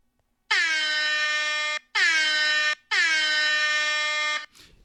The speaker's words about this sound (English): Yep, those were the air horns, because that was dope, guys. That was pretty dope. So those are 3 air horns if you count them correctly. I might be off by 1